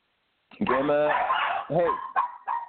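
Dogs bark excitedly, a long, loud yelping outburst followed by several shorter, rapid barks in quick succession.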